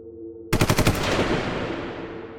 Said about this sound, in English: He hears the echo of the gun in his head, placing his hand on his holster.